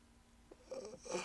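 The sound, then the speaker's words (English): A single drawn-out yawn, breathy and rising into an airy, voiced exhale near the end. Fairly quiet, with no talking over it. “Why do I keep yawning?”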